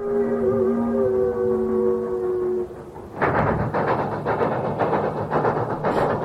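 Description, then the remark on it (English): A train horn blares a sustained, multi-toned chord for nearly three seconds, then cuts to a loud, rumbling rush of a passing train with rhythmic rattling and clatter. “Trains! Train! A railroad story.”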